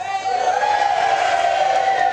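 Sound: crowd cheering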